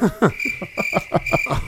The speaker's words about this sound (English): Wow, that cricket is just really going.